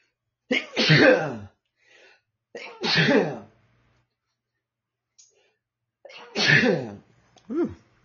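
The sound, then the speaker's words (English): Three loud sneezes in a row, spaced a couple of seconds apart, with faint breaths and a short sniff in the pauses between them, during a live recording in Palm Springs. “Guys, I had to put a little pause there, because I had a little sneezing frenzy right now.”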